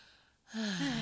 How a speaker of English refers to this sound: I hate heavy breathing. I'm not equipped to handle other people's mouth noises.